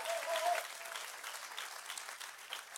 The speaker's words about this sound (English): Come on, give him a real hand clap today. God's good.